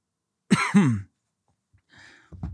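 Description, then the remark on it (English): Two harsh coughs in quick succession after drinking water too fast and having it go down the wrong pipe into the lungs, then a brief pause and a softer rasping throat clear or gasping cough, no speech present. “Did it go down the wrong pipe? Went into my lungs.”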